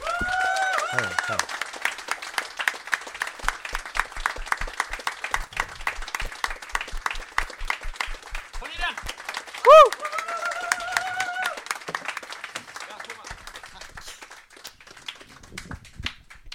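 A crowd applauds steadily for about fifteen seconds to welcome comedian and journalist Ina Lundström as a guest. The applause is a dense patter of many hands, with a few high whoops and cheers rising above it before the clapping thins out at the end.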